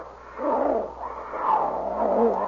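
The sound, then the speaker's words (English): Two wild cats in a jungle clearing fight tooth and claw, snarling and roaring at each other in a fierce, continuous scuffle. The growls rise and fall loudly for a few seconds, with no one speaking. “Jungle clearing, the two wild cats are at it, tooth and claw.”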